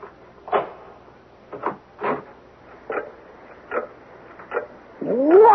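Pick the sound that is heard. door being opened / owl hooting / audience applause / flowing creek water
door being opened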